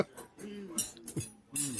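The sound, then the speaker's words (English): Silverware and fresh plates clink against each other on a table as they are set out for when the food comes, in a few quick, bright knocks spread over a couple of seconds, fairly quiet, with faint murmuring in the background. “So silverware. When the food comes. Fresh plates.”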